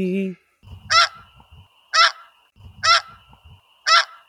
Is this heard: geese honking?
yes